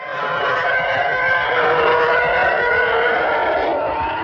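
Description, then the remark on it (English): A Star Wars TIE fighter engine roar sound effect screams steadily for about four seconds, a loud, continuous howling whine with a harsh, wavering edge that never fades, heard on its own without any voices. “And this is a TIE fighter.”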